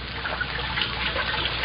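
Water splashes and churns steadily for a moment, a continuous rushing slosh with no voices, as Archie Andrews stands up in water only 3 feet deep.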